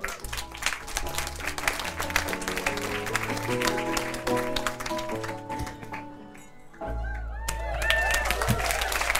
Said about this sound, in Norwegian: Ja da, det klappes på Lille Ole Bull I Bergen. Vestlandets stiligste kjeller fylt til randen.